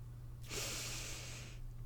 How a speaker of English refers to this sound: Take a deep breath.